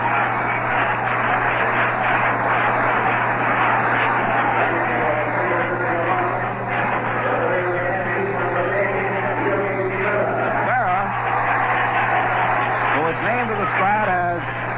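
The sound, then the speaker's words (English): A ballpark crowd applauds Yogi Berra as he comes up to bat for John Romano for the American League, in a steady, dense wash of clapping and cheering that fills the whole clip, with a low electrical hum running underneath and murmuring voices mixed in. “Yogi Berra will come up and bat for John Romano, and a round of applause for the Yogi.”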